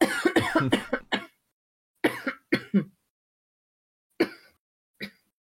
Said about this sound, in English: I'm going to cough now.